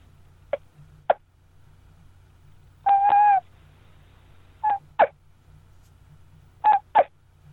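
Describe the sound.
A wingbone turkey caller imitates a hen's soft sounds with high, reedy notes: two quick soft pops, one drawn-out whine, then pairs of short yelping chirps, with no one talking over a low steady hum.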